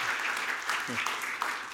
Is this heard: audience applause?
yes